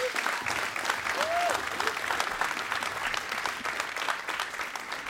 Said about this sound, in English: So for you all, and you guys give him a big round of applause, I'm thankful for you all.